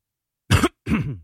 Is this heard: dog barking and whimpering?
no